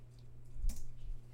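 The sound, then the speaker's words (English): Faint clicking of keys on a new computer keyboard, with one sharper keystroke standing out against a steady low electrical hum, a few softer taps following. No one speaks. “Oh, do you hear the clicking, guys? I got a new keyboard because I was tired of the loud clear.”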